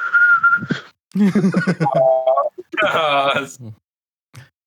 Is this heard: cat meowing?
no